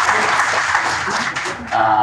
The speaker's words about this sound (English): We've got a few more notes, but let's give a round of applause to these amazing athletes. Let's see them out there.